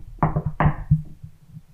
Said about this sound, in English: Jinx, knock on wood.